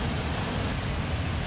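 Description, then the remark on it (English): A steady, rushing wash of ocean waves fills the short stretch, a dense hiss of surf with no distinct breaks or voices, even in loudness throughout. “And then I also kind of get lost in, well, just the waves and the horizon.”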